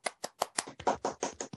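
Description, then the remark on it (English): Steady hand clapping, about nine sharp claps at an even, fairly quick pace, moderately quiet with no voices. “That would have been very awkward there if I had been the only one clapping.”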